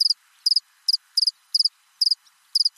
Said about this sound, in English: There's going to be a cricket insert.